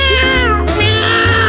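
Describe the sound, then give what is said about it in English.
A man sings in a high, yowling cat-like voice, imitating meows in a continuous, loud melodic line with strong harmonics and a brief break midway. “singing there as a cat.”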